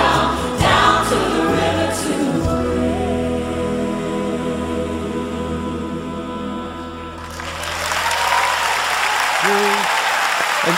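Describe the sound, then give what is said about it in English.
A group sings with sustained tones, then the music ends and a crowd breaks into steady, fairly loud applause for a renewal of baptismal vows in the Jordan, filling the last few seconds. “And we applauded probably about after each one, and you could see the gasp that people have as they're catching their breath and shouting hallelujah or going, wow, that's really cold.”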